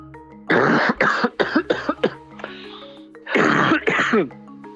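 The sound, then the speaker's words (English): Loud coughing in two fits: a quick string of harsh, throaty coughs, a brief pause, then a couple more rough coughs, like someone clearing a tight chest. “Did we get a cough?”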